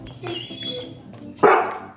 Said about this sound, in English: Big dog. Oh my God. What are you doing?